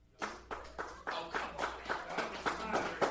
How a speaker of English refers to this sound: So, by a round of applause, I suppose. We'll go through the ones that got nominations.